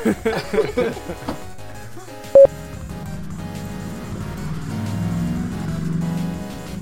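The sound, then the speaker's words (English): A motorcycle engine revs steadily in the background for several seconds as its rider practices wheelies, a low droning rumble that swells slightly. Brief voices come at the start, followed by a short sharp tone. “Don't mind the motorcycle.”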